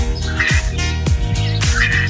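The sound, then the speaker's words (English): A glossy ibis (Plegadis falcinellus) gives a steady series of hoarse, croaking grunts, roughly two per second, loud with a harsh, nasal rasp and no voices. “It's Plegatus falcinellus, the glossy ibis, today's Talkin' Birds featured feathered friend.”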